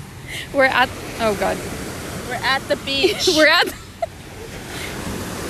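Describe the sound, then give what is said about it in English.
A steady roar of ocean surf at a beach washes across the whole recording, with waves rushing close by on the shore while voices talk over the constant wash of water. “We're at the beach and the waves are getting really close.”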